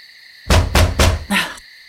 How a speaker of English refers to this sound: You better not be banging on the walls like that.